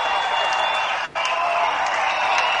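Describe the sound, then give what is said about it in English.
A basketball arena crowd at an Amherst game roars steadily, cheering and clapping in a loud, dense wash of noise in the first minute of play as a player is fouled. The noise dips for a split second midway before surging right back. “And you can hear the crowd behind us here.”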